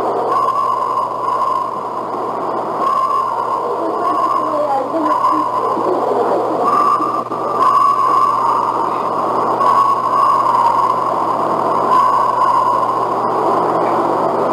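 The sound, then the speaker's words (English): A series of steady-pitched whistles, roughly seven, recorded in the Washington wilderness in the late 1970s, sounds at irregular intervals over a constant hissy background, fairly loud, with no talking. “All right, now this is Washington again. Whistles.”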